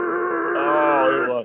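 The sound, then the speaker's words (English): A voice mimics a vehicle engine in low gear straining at full throttle, a sustained, buzzing, harmonic drone that holds steady and slightly rises before cutting off abruptly after about a second and a half. “And the engine's and he's got it floored.”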